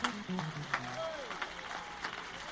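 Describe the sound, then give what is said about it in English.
An audience claps its hands to God in a steady, dense patter of crisp slaps, with a voice and low sustained tones sounding underneath the clapping. “Come on, clap your hands to God.”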